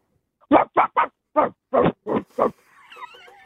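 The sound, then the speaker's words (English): A caller from Croydon imitates a dog with seven quick, loud barks in a steady rhythm, then trails off into a thin, wavering whine, with no other talking. “give us your dog”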